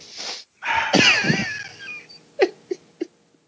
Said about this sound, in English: And that's a terrible fart machine. Whoever has it, you spent your money on the wrong stuff. It's terrible. I can't believe this. This costs money?